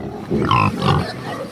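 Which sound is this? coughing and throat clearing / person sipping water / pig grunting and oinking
pig grunting and oinking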